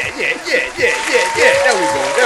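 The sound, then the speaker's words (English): A crowd claps steadily throughout to welcome a special guest, a former elementary school principal, a dense, bright patter of many hands that runs under a voice speaking over it. “Get a hand clap, beat now. Where the hand claps at?”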